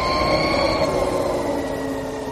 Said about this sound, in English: That's a Harley-Davidson electric motorcycle